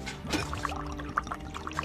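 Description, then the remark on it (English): Liquid pours steadily from a thermos in a continuous splashing stream, with a few small bright gurgles bubbling up over about two seconds and no voices. “Thermos. Quick. Unscrew lid carefully.”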